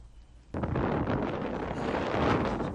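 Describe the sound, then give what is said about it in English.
Strong wind roars suddenly into the microphone after a quiet half-second, a loud, continuous buffeting rush that stays intense throughout. “It was so windy. As you can see. Wind blow.”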